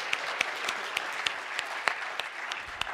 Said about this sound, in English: Now, should I give them a clap of hands?